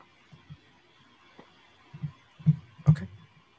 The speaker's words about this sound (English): That's some dice. That's some more dice in.